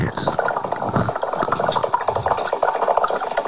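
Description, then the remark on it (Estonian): A hookah water pipe bubbles steadily for a few seconds, a dense, rapid gurgling rattle of small pops at a fairly even, moderate loudness, with no one speaking. “Müstiline vesipiibu hääl.”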